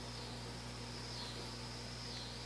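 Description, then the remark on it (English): A faint, continuous high-pitched drone of cicadas buzzing outside, heard from indoors, that swells and dips slightly, with no talking, over a low steady electrical hum. “Those goddamn cicadas.”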